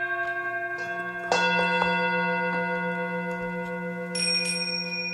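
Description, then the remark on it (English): A gong rings with long, shimmering sustained tones, struck firmly once and then again later, the metallic resonance swelling and lingering, with no voices. “Take us out with the gong.”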